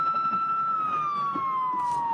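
A loud fire truck siren wails in one long, steady, slowly falling tone over a rumble of traffic noise, with a short hiss of noise near the end, as a stolen fire truck is chased by the CHP on the 133 and 405 freeways.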